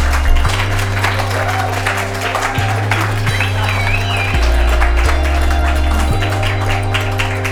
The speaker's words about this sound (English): Can we all give a round of applause to Carrie Wallace?